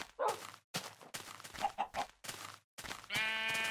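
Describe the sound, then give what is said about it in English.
Several sheep, including two pink sheep in the same flock, bleat in quick succession, fairly loud, with short pauses between the wavering calls and a longer, buzzier bleat at the end. “Double pink sheep, two pink sheep in the same herd, flock, murder, whatever they're called.”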